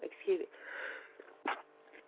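A person sneezes, with short breathy bursts and a sniffly, wheezy intake in between; no clear talking.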